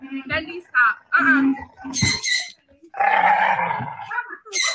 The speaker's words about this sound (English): So for those of you who are just listening, this is a video of an adorable, an absolutely adorable doggy, an English bulldog named Fendi. And he's cute, all right. She's cute, all right. Except what's scary is if you're not watching, she has a knife